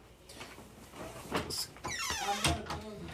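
A person pees into a toilet bowl with the bathroom door open, a steady stream splashing for a few seconds. The pitch of the trickle shifts as it runs, with no talking.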